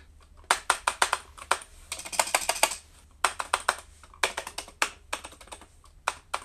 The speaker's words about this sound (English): imitating me tapping the keys, going... because that's kind of what it sounds like.